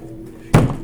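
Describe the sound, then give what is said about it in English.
A cup of water gets knocked over with a single dull thunk, followed by a brief rush of noise as it settles. Quiet before, no voices. “Yes, I knocked my water over.”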